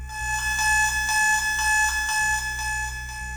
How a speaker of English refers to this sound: I opened my door and right away I could hear my alarm clock screeching.